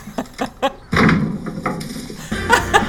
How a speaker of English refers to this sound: I love that they got the door falling over.